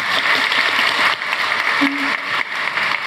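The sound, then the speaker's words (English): An audience at a book talk claps steadily for about three seconds for a young audience member who answered a question about a picture, a dense, loud wash of hand claps at an even level, with a brief low vocal sound poking through midway. “Give him a clap, would you?”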